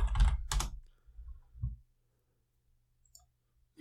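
A couple of sharp computer keyboard key clicks, a key pressed accidentally while reaching, land in quick succession, followed by a softer low thump and a few faint clicks amid otherwise quiet surroundings.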